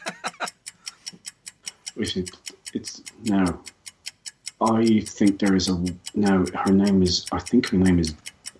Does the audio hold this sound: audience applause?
no